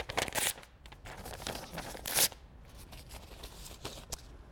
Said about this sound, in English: Why was it that this was the sort of thing that could be destroyed? Well, the straightforward answer is the piece of paper had parts. And in breaking it, in ripping it, what I literally did was I ripped one part from another.